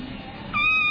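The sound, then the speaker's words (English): A single high, thin kitten meow, played from a video, rises out of a low background hum about halfway through, clear, holding steady until the end. “No, I'll play another kitten video while we're waiting.”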